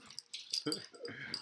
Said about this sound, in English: There's a dog in there too. Well, now there's two. Mine was asleep because she was like, nothing's going on out here.